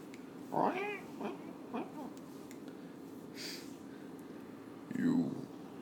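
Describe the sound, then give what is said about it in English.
A person imitates an ocelot's meow, giving a few wavering, drawn-out mews spaced several seconds apart, the first and last the loudest, over a steady low hum. “And he's striking like a little ocelot. Ocelot cat.”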